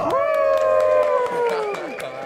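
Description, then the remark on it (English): An audience claps and cheers to welcome a guest on a show, with a long sustained whoop that slowly falls in pitch riding over steady crowd noise and sharp, scattered hand claps. “Please give a round of applause to my buddy, old pal, old friend,”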